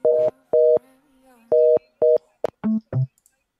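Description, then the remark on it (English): A telephone line tone beeps four times in a steady on-off rhythm like a busy signal as a phone call goes unanswered, followed by a few shorter, lower electronic tones, fairly loud with no voices. “No one at all is picking up today.”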